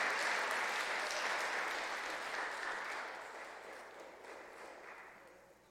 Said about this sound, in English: Could we give these guys a round of applause? Thank you, guys. Great job. Appreciate you.